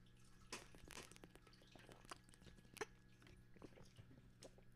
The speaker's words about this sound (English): Getting a sip of water. You got to stay hydrated, all right? It's important.